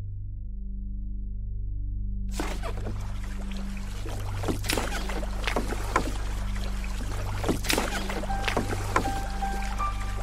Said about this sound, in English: We're here in the boat. We do this every year during the off season of PFBI Fantasy. We're here in the low boat,